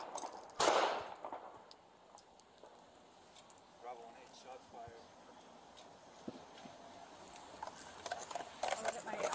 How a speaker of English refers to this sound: Police officer in Arizona shoots and kills a 61-year-old man in a motorized wheelchair from behind. Oh, God. Not the fucking gunshots.